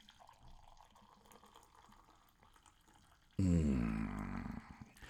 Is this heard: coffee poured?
yes